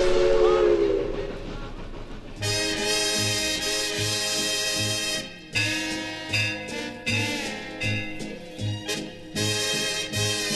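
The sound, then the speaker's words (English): A long, wavering steam locomotive whistle blast sounds for about two seconds, then a full band kicks in with a steady chugging beat that carries on loudly to the end. “whistle down the line. I figure that it's engine number 49.”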